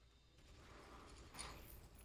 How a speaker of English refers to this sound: There's gunfire in the distance.